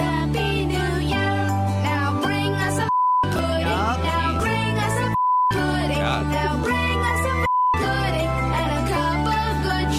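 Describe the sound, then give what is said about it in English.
An upbeat Christmas song with singing is cut three times by short, steady censor beeps, each one replacing the music for a moment at fairly regular intervals, loud and clear. “If we took the beep out of there, what would we really heard”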